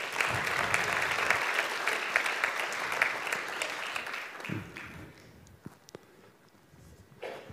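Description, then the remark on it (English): Sustained applause from a sizeable audience at the Horsham Church of Christ welcoming a speaker as he comes up, dense and steady for several seconds before thinning out into scattered claps and a few footsteps toward the end. “Can you also keep the applause going?”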